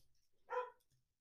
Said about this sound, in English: And Riley says hello too, my dog. You can hear it barking in the back.